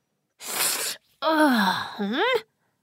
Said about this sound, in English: A strong gust of wind came, and they sneezed more severely. Achoo! Achoo! Achoo! Achoo! Achoo! Achoo!